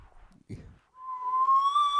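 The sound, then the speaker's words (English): Someone attempts to whistle into a microphone: a couple of breathy puffs of air, then a thin, steady whistled tone that holds for about a second and drifts slightly upward, loud. “I'm trying to whistle.”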